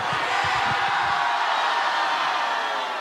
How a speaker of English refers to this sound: All right, ready? On 3, 2, 1, just yell bananas like it's going to end the episode. Prove Brooklyn's the best. Ready?